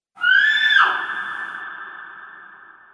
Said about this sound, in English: And right then, you hear a scream outside.